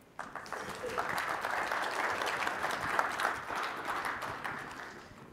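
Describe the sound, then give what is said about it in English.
Steady applause for the co-speakers at the close of a presentation on analytics and machine learning, a dense patter of many hands clapping at once that holds at an even level for about five seconds before tapering slightly at the end. “And just want to give an applause to all of our co-speakers today.”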